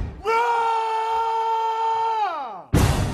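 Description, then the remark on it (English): A loud, sustained scream by Kevin Garnett holds one high pitch for about two seconds, then slides sharply downward and cuts off into a sudden burst of dense, noisy sound from a music remix. “For those of you that don't know, that was Kevin Garnett screaming right in the middle of it, the remix that we chose, because just like the morbid scream there, right?”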